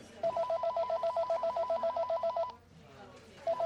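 A telephone rings with a rapid, warbling electronic trill in a steady burst lasting over two seconds, pauses briefly, then starts ringing again. Faint background voices murmur underneath.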